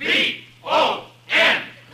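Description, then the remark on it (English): A voice imitates a roaring football stadium crowd going wild as a player runs out onto the field late in a game, with three loud, breathy surges of cheering in a steady rhythm, each swelling and fading, over a faint low hum. “And as I ran out into the field, the crowd went wild.”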